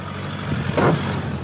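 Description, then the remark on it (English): A four-wheel drive car engine rumbles steadily over rough crunching gravel road noise while travelling deep into the rainforest, with a brief louder surge of gritty rattling midway through. No voices. “In a four-wheel drive car, we travel over gravel roads, deep into the rainforest, until the road becomes so steep that we can only continue on foot and by mule.”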